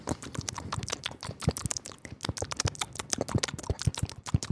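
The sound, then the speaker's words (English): Crunchy chewing of minced drywall with rapid, crisp snipping clicks that sound like scissors cutting, continuing steadily in an irregular rhythm with no talking. “You know what's interesting is that me eating sounds exactly like scissors.”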